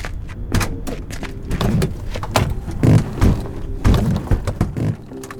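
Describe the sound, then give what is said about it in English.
Muffled thumps and shuffling, like people climbing into a car, with several heavy door-closing thuds scattered through the few seconds and no talking. “Get in the car.”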